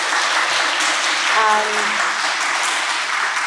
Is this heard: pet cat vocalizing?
no